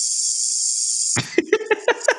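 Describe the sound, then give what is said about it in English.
A snake sound effect played from a soundboard: a steady, loud, high-pitched hiss runs for about a second, then cuts off into a few short, choppy vocal bursts. “I love the sound effects today, dude. I know. I got the soundboard, man.”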